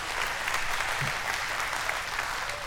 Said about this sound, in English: All right, you guys can go. Would you guys give him a quick round of applause?